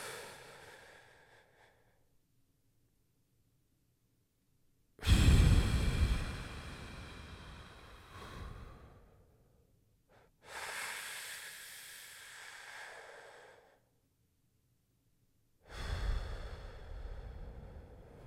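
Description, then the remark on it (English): Slow, deliberate breathing as a coping exercise for anxiety: long airy inhales of about five seconds, a held breath of about three seconds, then exhales of about five seconds, separated by silent pauses, with no talking. “So the coping mechanism that I do is I do a breathing coping mechanism where I inhale for 5 seconds, hold for 3, and then try to exhale for 5.”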